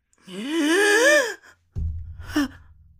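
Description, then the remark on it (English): A voice acts out the character Coriander taking a long, deep gasp for breath, loud, its pitch wavering upward, followed after a short pause by a low, rough rumbling sound with a brief groan. “Coriander takes a deep gasp.”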